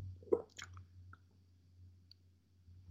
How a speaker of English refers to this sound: Pardon me, as I just needed some water.